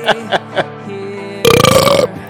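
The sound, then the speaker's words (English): Three quick, short burps give way to a long, loud, gravelly belch lasting over half a second, with no talking. “Belch Fest.”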